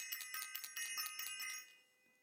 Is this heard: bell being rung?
yes